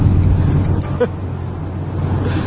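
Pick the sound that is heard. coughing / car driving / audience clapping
car driving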